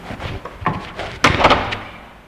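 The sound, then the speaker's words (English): An apartment door is swung shut: a few light clicks and rattles, then one solid, fairly loud slam that rings briefly and fades. No voices. “And for the first time in 12 years, he had a door he could lock.”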